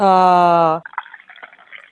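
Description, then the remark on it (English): A loud, steady sung or hummed note gives way to the soft, trickling splash of Vietnamese green tea being poured into a cup, quiet for about a second. “There was no pouring of the tea ceremony, which was a bit disappointing, I've got to admit.”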